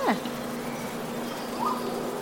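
A swarm of bees being moved into a hive with frames drones in a steady, continuous low buzz for the whole stretch at moderate volume, with a couple of brief, faint higher-pitched sweeps passing over it.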